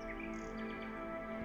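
birds chirping

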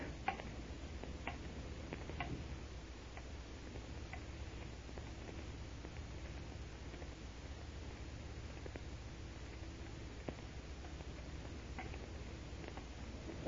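clock ticking

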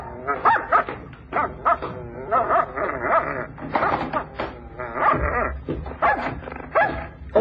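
dog barking and whimpering

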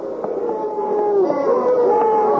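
angry arena crowd jeering

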